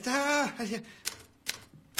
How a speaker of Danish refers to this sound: Jeg har kun nået til købe. Så se dog på det, de skriver, menneske. Nej. Nej, de siger på tasteskolen, at hvis man vil lære at skrive med alle 10 fingre, så må man aldrig kigge på tastaturet.